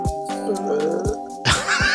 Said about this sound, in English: That was a dinosaur burp. It came from my little baby chest.